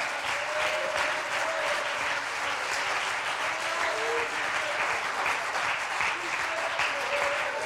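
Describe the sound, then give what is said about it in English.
An audience gives God a sustained hand clap of praise, many hands clapping in a dense, even wash that holds at the same loudness throughout, with faint voices calling out beneath it. “Let's all give him a good hand clap of praise.”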